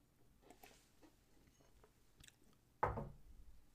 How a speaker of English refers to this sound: Let me wet my whistle by drinking a little bit of water from the BCP podcast mug.